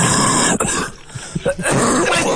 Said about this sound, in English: Oh, no. It's a real cough. Sorry. Bad cough.